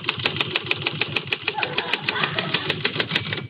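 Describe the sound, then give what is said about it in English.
A person showing how to type at a desk imitates a typewriter with their voice: a fast, steady run of sharp clicks, roughly five per second, over a buzzing, mechanical-sounding hum, with no words spoken. “See, you just bend over the typewriter like this, and you go...”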